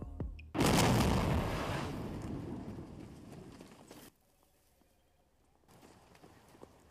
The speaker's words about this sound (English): That's good, but the explosion needs to be bigger. There needs to be more fire.